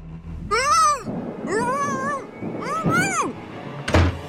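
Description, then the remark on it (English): A stray cat meows three times in a row at night, each call long, rising and falling, and loud, followed by a short dull thump at the end. “Or maybe you're having a tough time deciding what to do with the stray cat that's keeping you up all night.”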